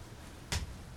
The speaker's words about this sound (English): You know, not the acoustics aren't the best. This is basically a stomp.